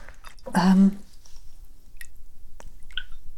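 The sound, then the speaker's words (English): A short splashy burst, then a few sparse, separate drips falling at uneven intervals, fairly quiet against a low background hum: water from a flooded plant saucer, set on a tray, after watering with a watering system. “So if the plant was in a saucer, but then I put the saucer on a tray just because. And I'm pleased that I did, because I flooded it.”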